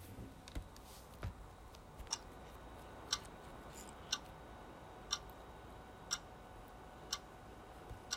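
A classroom clock ticks steadily about once per second, each tick a crisp, sharp click over a faint background hiss, moderately quiet, with no voices.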